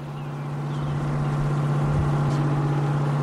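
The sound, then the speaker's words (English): A boat engine drones steadily, its low, constant hum rising slightly in loudness, with a wash of water and wind noise around it and no voices, as the boat heads off the coast of New Jersey to launch an ocean glider. “Later that morning, Glenn and part of the glider team were on a boat headed off the coast of New Jersey to do the launch.”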